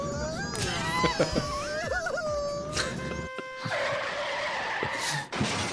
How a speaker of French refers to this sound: il y a plein de motos.